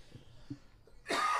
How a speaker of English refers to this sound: Sorry, I keep coughing here.